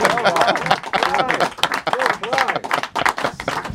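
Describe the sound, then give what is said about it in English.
A small audience applauds in a dense, steady patter of clapping that lasts throughout, while voices talk and cheer over it. “Oh, give him a round of applause.”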